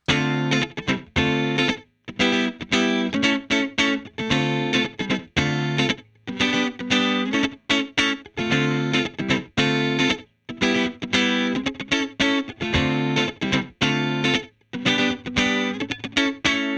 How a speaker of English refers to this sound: So I'm using a Stratocaster with FSC-59 pickups into the Solo Dallas Storm, which is then going into a Headstrong Little King, which is a black panel Princeton reverb. This one has no storm.